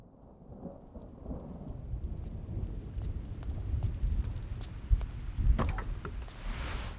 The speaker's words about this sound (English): Oof. It's wild out there. Haven't had a storm this bad in a long time. Everybody's gonna be mighty happy for all this rain.